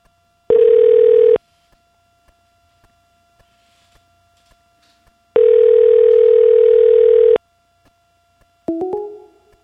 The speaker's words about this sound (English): Man, what a bozo I am. I dialed the wrong phone number, so let's give this a try again.